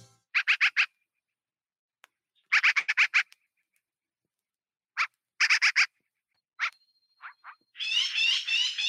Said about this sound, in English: And the first song is actually from an album, …. So everything you hear is birds. Page 118, American Crow.